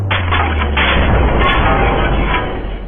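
A dark wooden octagonal floor drops open as a trap door when a cord is pulled, with a loud, sustained crashing rumble, a dense roar of noise with a low hum underneath that holds steady for about three seconds before easing slightly.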